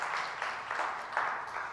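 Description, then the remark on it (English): An audience claps together as a clap offering to the Lord, a dense, steady wash of hand claps that swells and dips in soft waves, fairly quiet, with no voices over it. “And you can give him a clap offering as well, because he is faithful.”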